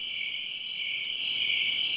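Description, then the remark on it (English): A cricket chirping sound effect is played: a steady, unbroken high trill that fills the full two seconds, a dense nighttime chorus at even volume with no voices or other sounds. “Now, you play your little crickets all you want.”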